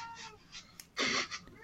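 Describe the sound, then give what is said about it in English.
A cat meows several times: a couple of softer mews, then one loud, drawn-out meow and a shorter one trailing after, with no talking. “Shut up, cat.”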